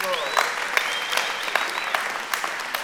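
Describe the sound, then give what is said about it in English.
An audience breaks into steady applause, giving the Lord a hand clap: a dense wash of many hands clapping at moderate volume with a few sharper claps poking through, and some faint whistles or cheers riding on top. “So we just give the Lord a hand clap for that.”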